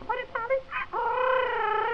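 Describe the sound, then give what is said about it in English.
A parrot squawks: three quick, choppy squawks followed by one longer, drawn-out screech that holds steady to the end. No one speaks. “This lamb for little Bo Peep, and a poll parrot for the little boy who lives in the garret.”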